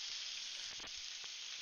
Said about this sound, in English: Smart kids, do not pour a liquid that is not an oil base into hot oil. Guess what it does? It fucking sears right up and starts spitting. So that's what happened.